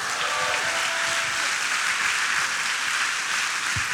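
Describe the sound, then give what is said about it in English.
An audience gives a clap offering to God, clapping together in a dense, steady wash of applause that holds at an even loudness throughout, with a faint sustained tone briefly audible underneath at the start. “If you believe that, give him one more clap offering.”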